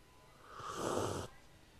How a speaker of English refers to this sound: Some people like that sound. Some people like a coffee sip sound. I think I like it. I think it's interesting that I like the sound when it's someone doing it with coffee.